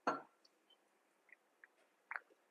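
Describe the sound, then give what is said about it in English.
Cups, one of them blue and silver, knock together once in a quick clink for a celebratory toast, followed by a few faint scattered taps and clicks in an otherwise quiet moment with no talking. “But before we do, you know, we gotta do our celebratory toast.”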